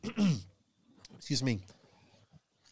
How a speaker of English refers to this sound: Excuse me. Sorry. He made me cough too